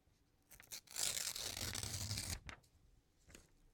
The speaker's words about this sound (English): Also me. That was me. That was actually ripping a paper, though.